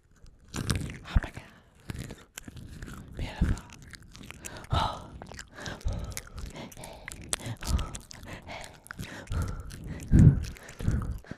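Crunchy chewing of nuts, with irregular bites and grinding crackles repeating over several seconds, plus occasional breathy gasps and murmurs.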